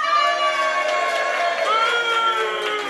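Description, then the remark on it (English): A live audience cheers loudly and steadily for a lady from Morden, a dense wash of many voices whooping and shouting together, sustained for a few seconds without a break. “Well, look, should we have a little, a cheer for each one?”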